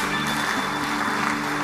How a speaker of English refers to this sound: Give the Lord a clap offering someone.